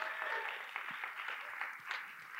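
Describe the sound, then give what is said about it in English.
An audience gives a round of applause for two people who acted as yoked oxen: a dense, steady patter of many hands clapping at once, holding an even, moderate level for a couple of seconds. “Let me give him a round of applause for our oxen today.”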